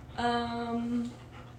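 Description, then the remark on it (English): A dog climbing up on people gives a single drawn-out whimper, a steady high-pitched whine lasting about a second before fading into quiet background noise. No talking. “But anyways, her dog is climbing up on us right now.”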